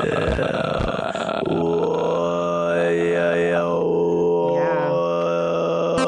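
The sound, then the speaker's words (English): A sustained, buzzing vocal drone with stacked overtones, a low steady fundamental and whistly upper harmonics gliding up and down, preceded by a rough grunting start. Someone imitating throat singing. “I'm a huge fan of that sound, but I like to do it when it's affected and it starts to sound like throat singing or something.”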